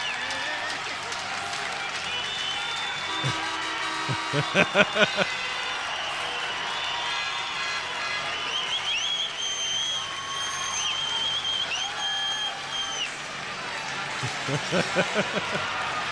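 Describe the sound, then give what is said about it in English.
A packed hockey arena roars steadily while cheap air horns blare in long, shrill, overlapping tones, with sharp bursts of clapping and banging rising above the din a few times. “I'll turn the volume up to blow everybody's eardrums on this with the cheap air horns and shit.”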